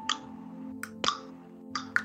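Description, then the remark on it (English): Several sharp tongue clicks pop against the roof of the mouth (the palate) in a basic tongue exercise to establish suction, spaced unevenly over two seconds, crisp above a low steady hum, with no talking. “So we start by having a clicking sound.”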